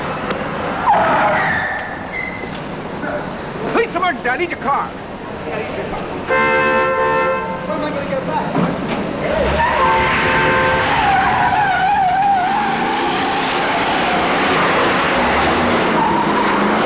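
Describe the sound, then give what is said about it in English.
A loud, chaotic car chase from a film: engines roar and tires screech in long skids, with a blaring horn-like tone midway and some voices mixed into the continuous din. “No, like, you can comfortably say, like, that is one of the greatest chases in cinema history.”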